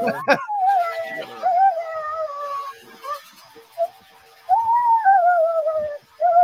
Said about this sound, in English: That's torturing a dog, though, man. When a dog don't like it like that, that's totally torturing it.